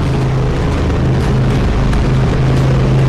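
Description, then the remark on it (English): A deep, throaty V8 race car engine idles steadily inside a pit garage, loud and continuous at a fairly even idle-to-low rev, with a strong low drone throughout and no speech. “Always enjoyed the look of this car, and it was always really enjoyed the sound with the big throaty deep V8 here.”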